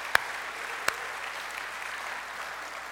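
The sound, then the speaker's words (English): A crowd applauds steadily for children in fifth grade or under, a dense wash of many hands clapping at once, with a couple of sharper, louder claps standing out near the start. No one speaks over it. “Hey, give them a hand, clap for them.”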